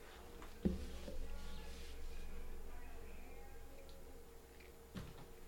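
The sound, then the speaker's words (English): A door swings shut with a sharp thud and a low resonant rumble, followed by a quiet stretch and a second, softer click near the end, like the latch settling. “I'm just going to close my door real quick.”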